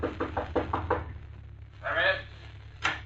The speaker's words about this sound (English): Finally, he finds room 314, the number Batman had given him at the end of the hall. He stops and knocks on the door.